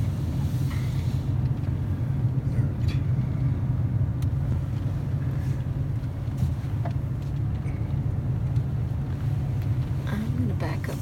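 A giant truck engine rumbles nearby, behind the speaker near a liquor store in Sault Ste. Marie, a steady, heavy low drone that fills the whole clip with little change in loudness, with faint traffic-like noise above it.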